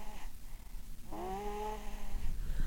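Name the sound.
pet snoring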